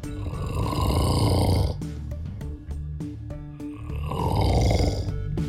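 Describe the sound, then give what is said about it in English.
A man snores loudly in a woman's recording of her sleeping husband, two long rattling, grunting snores separated by a brief quieter, wheezy pause, with no talking. “Or worse, your own snoring?”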